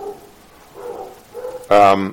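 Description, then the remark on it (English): A dog lets out one loud, sharp bark near the end, following a stretch of quieter, faint murmuring sounds in the background. “I can hear the dog”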